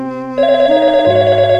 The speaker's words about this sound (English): And then the phone rings.